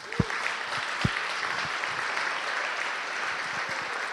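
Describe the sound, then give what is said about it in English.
A crowd at an evening sermon gathering on Mother's Day claps steadily in sustained applause to honour mothers, a dense wash of hand claps with a few sharper, louder claps standing out near the start. “Could we just honour our mothers just with a round of applause?”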